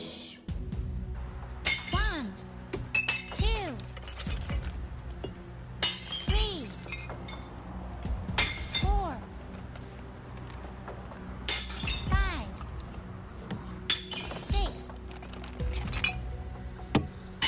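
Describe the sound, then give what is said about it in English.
Glass bottles clink together repeatedly in the Bottle Bang Bingo guessing game, with bright ringing strikes in irregular clusters, some with a rising or falling pitch as they knock, over a low steady background hum. “Here we go. Bottle bang bingo.”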